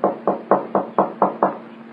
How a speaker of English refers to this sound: Well, this is Buddy's room. I know he's in. I didn't see him go out today. Well, there's no answer. Knock again